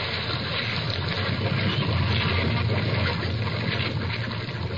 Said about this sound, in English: The solid white buttress of the whale's forehead smote the ship's starboard bow till men and timbers reeled. Through the breach, they heard the waters pour as mountain torrents down a flume.